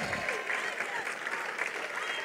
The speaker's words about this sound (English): Give the Lord the best clap offering you ever gave him in your life.